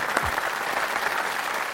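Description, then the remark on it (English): The audience at the Latitudes Conference in San Diego applauds steadily, a dense wash of many hands clapping at a constant loudness with no voices standing out. “and one more time, round of applause, we are now number 5 in the world.”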